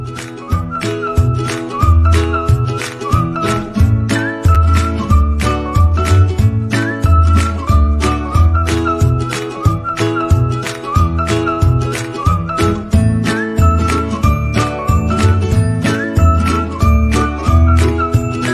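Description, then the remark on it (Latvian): An upbeat instrumental intro jingle plays loud, driven by a steady, punchy beat with bright, tinkling melodic accents running throughout, and no voices over it. “Pagad, un pirms tam intro.”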